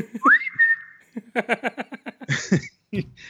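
A person whistles a brief tune, a single clear note sliding upward and holding steady for about half a second, followed by a quick run of rhythmic voiced bursts like laughter.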